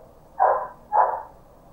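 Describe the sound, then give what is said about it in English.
Two muffled dog barks, about half a second apart, each a short midrange burst that swells and fades against a low, steady background hum. No one speaks. “Y'all hear these dogs?”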